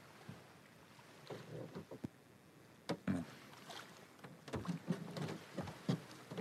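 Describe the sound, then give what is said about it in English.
Wooden creaks and soft knocks from a small boat shifting on water, with gentle lapping and a few sharper thumps against a quiet, breezy background. “Because I'm on this boat, my final parable should be about fishing, yes?”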